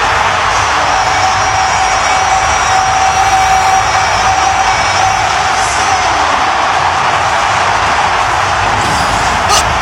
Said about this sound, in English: Listen to that crowd. Oh, my God. Lionel Messi in his first game with Inter Miami in stoppage time. Ridiculous free kick into the upper corner that just skirts the hair of one of the guys in the wall.